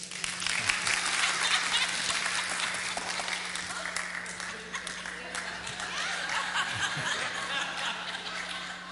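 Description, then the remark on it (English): An audience claps steadily for several seconds as a speaker walks on stage, a dense, continuous wash of applause with some scattered chuckles mixed in, sustained without a break from start to finish. “Who applauds for the video? Nope. Nobody. I walk on the stage. What do I get?”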